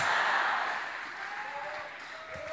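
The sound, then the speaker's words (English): A crowd claps hands together in a dense, steady burst of applause that stays loud throughout, with a faint voice or tone rising briefly near the end, as a preacher tells them to clap their hands and say 'blow out'. “And tonight, every evil fire in your family, as you clap your hand, say, blow out.”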